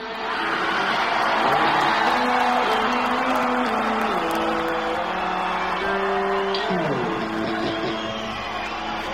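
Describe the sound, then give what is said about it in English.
A loud, roaring concert crowd cheers and yells continuously over live band music as the band kicks into a song, the wash of voices steady and dense for the whole stretch. “… kick starts, crowd goes nuts, and something goes wrong.”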